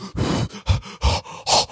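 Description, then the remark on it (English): A person loudly imitates heavy breathing on someone to warm them up: four forceful, breathy huffs in quick succession, with a rough, growly edge and short gaps between them. “Breathing hella hard on you and shit.”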